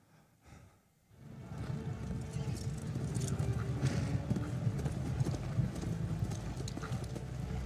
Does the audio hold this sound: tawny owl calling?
no